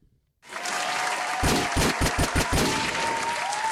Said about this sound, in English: Let me do the hand claps.